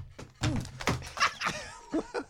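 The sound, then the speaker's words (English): A plastic water bottle smacks against a belly in a few dull, fleshy thumps, mixed with bursts of laughter and excited voices. “Nobody was slapped. It was the water bottle.”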